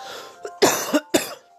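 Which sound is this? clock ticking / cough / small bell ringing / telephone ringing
cough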